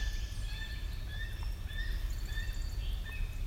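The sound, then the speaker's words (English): A gull-like bird calls repeatedly, its high, thin cries overlapping in short bursts over a steady low rumble of background noise. “A gull. It sounded like kind of a gull, yeah.”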